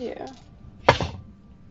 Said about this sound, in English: He's rolling a lot of dice back there.